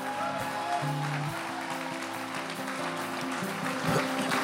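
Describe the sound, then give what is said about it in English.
A large crowd claps and shouts together in a continuous wash of applause and cheering, giving the Lord a clap and a shout, with steady musical tones sustained underneath throughout. “Two, why don't you give the Lord a clap and a shout?”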